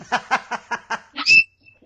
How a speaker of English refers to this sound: It's my dog. She gets jealous when I don't hold her.